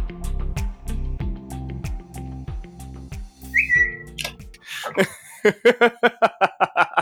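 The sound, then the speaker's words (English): A brief, high whistle-like text alert chirps once from a phone not set to silent, as a company's text message arrives, over a thumping rhythmic music beat, followed by a run of short, pulsing bursts of laughter. “I just realized my phone wasn't on silent. And some company has got my number and sending me dirty texts.”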